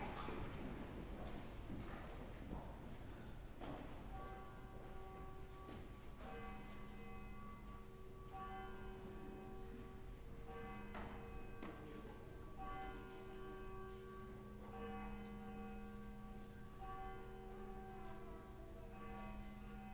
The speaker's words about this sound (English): Please stand. The voice of the Son of God bell will call us to worship.